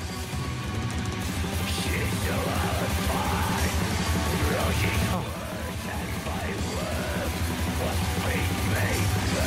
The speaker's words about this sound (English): Oh, this. That is, for me, the introduction of melodic extreme metal.